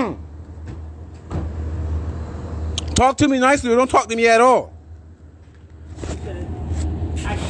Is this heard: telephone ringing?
no